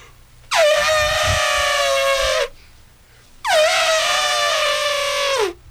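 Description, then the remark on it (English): Someone imitates an elephant trumpeting with two loud, brassy, horn-like blasts, each about two seconds long and sliding slightly down in pitch at the end, separated by a short pause. “Elephant?”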